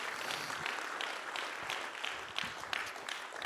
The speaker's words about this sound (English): Praise God. Thank God for the covenant. Let's give the Lord a hand clap offering of praise.